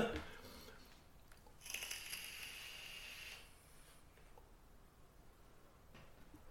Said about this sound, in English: Now here I am making all the crackles. Yeah, with your vape.